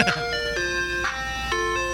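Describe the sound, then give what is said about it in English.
An ice cream truck jingle plays a bright, electronic melody of sustained tones, backed by a steady drum beat thumping roughly every half second, with a low engine hum beneath. “You know you're in the ghetto when it's got a drum beat on the ice cream.”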